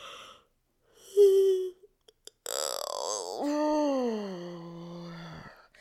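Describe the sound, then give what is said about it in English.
A long, voiced yawn slides slowly downward in pitch and trails off, preceded by a brief breathy vocal sound, a few faint clicks and a sharp inhalation, fairly loud. A person yawns while reaching up on one side to stretch between the ribs. “Can you find some space between your ribs by reaching up on one side and yawning?”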